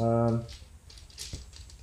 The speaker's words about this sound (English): I'll have to find my D10s. There's so many dice in this bag.